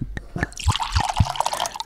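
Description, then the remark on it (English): A short pour of real wine into a glass: a few low glugs and drips at first, then a steady bright splashing stream for about a second before it stops. No one speaks. “Real wine. Real wine short, pour.”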